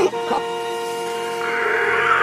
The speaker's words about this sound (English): Janelle pounded the car horn, paralyzing the children as they shrieked in pain.